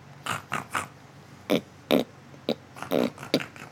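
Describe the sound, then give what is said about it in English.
A person imitates a pig, making a quick series of about nine short, rough snorting grunts in uneven bursts, fairly loud and with no talking. “It's my famous pig sound.”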